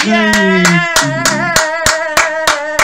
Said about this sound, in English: That's not the sound of the fringe this year. One person clapping.